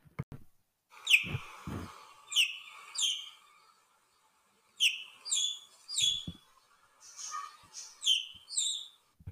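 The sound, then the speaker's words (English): Newly hatched chicks, hatching from eggs under a hen after 23 days, chirp in short high-pitched bursts of peeps, repeated in clusters with brief pauses between, fairly clear, with a couple of soft low knocks near the start. “It was only after 23 days that she got up off the eggs and we could hear the tiny chirps and cracks.”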